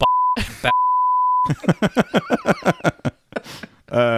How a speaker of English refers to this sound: You have to bleep his name out until you get permission.